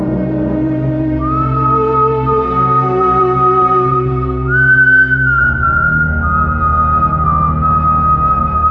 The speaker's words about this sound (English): There's someone outside in the corridor. Have they heard us? They'd hardly be whistling if they had.